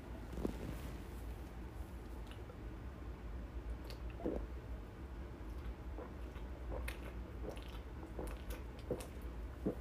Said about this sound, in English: Guys, hold on. I'm going to take a drink real quick.